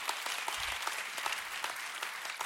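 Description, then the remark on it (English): A crowd applauds the announcement that the Montgomery County campus relaunch was completely debt-free, many hands clapping in a dense, continuous wash of sharp claps that holds at an even level throughout, with no voices standing out. “Come on, if we're gonna clap.”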